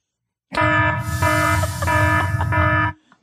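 A loud, harsh alarm buzzer blares for about two and a half seconds, a steady droning tone with a few brief stutters, then cuts off abruptly.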